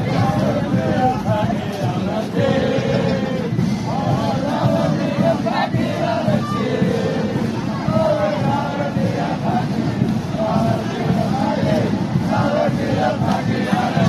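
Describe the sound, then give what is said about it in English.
A large crowd chants and cheers loudly and continuously, many voices blending into a rough, rhythmic roar that holds steady for the whole stretch without pause. “The crowd clapped and cheered and laughed, and the video was posted online and had 3/4 of a million views.”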